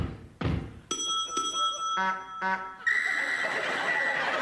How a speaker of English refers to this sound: That was two clumps with her walking stick, two rings on the bell, two hoots on the horn, and one whistle.